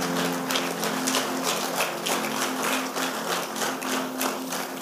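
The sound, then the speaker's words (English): An audience claps for the Lord together in a dense, continuous burst that holds steady at a fairly loud level for several seconds, with a faint low sustained tone running beneath the applause. “Give the Lord a clap of hands, someone.”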